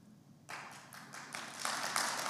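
Hand clapping starts abruptly after a brief quiet moment, a quick patter of claps that thickens and grows louder over about two seconds, with no voices.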